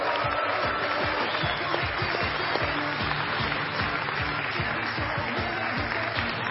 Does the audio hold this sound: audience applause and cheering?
yes